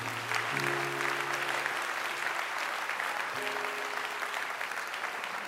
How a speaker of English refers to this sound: Amen. Amen. Come on, give the Lord a hand clap for praise.